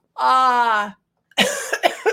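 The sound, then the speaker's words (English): A drawn-out, falling vocal sound is followed by a quick series of three or four rough, throaty coughs, fairly loud, with no words spoken. “that's for you. I don't know if you're having a cough or not.”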